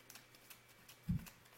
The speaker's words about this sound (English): So I'm shuffling the same four cards. Tell me when to stop.